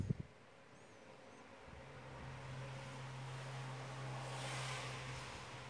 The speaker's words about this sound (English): Cars were kind of annoying when I opened the window and I realized I want to talk to you.